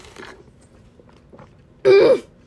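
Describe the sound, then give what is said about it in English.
A quiet stretch of faint mouth and handling noises, then one short, loud slurp through a straw as someone sips a slushie, ending abruptly after about half a second. “Well, let me take a sip of my slushie.”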